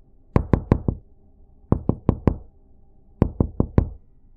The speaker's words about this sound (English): I'd text my cousin, "Come open the door," followed by knocking an obnoxious tune and he'd come let me in.